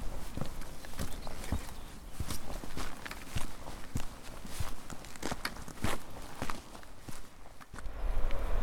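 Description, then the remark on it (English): Steady footsteps walk at an even pace through an echoey tunnel at Porthgwara that leads down to the beach, each step a sharp tap with a reverberant tail, continuing throughout with no talking. “Echoey tunnel at Porthgwara leads down to the beach.”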